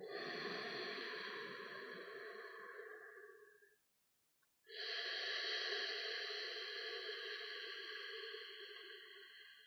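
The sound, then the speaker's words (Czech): Slow ujjayi throat breathing through a closed mouth, made with the tongue tip against the teeth as if saying 'ch': two long, steady, ocean-like hissing breaths, an inhale and an exhale, separated by a brief pause. Fairly loud, with no talking. “Zkuste se soustředit na oblast hrtanu a jen naslouchejte zvuku, který vychází z oblasti hrtanu.”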